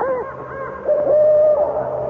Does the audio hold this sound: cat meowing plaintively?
no